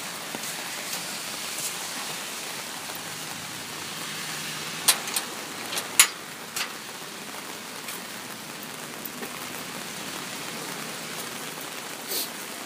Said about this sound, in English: It's raining in the Garden of Paradise. But it's paradisical, so it's got this rainbow-type quality.